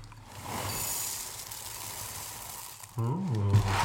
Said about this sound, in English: Now, do these guys pop the way Rice Krispies pop? You know, do you get the snap crackle? Let's hear this. That actually was a good sound.